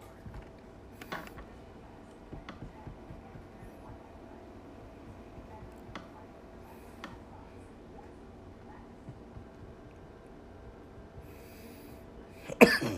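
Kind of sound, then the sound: human body sound, coughing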